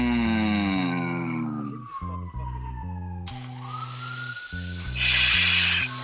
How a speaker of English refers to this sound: And I don't know if it's a siren going on where one of y'all at